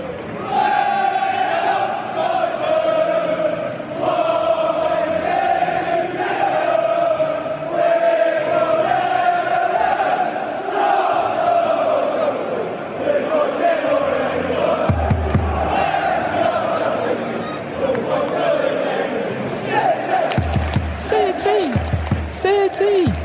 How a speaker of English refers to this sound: I can hear the cheers now from the crowd and the song that was being sung.